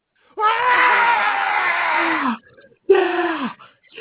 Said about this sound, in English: As a result, the audience goes loud.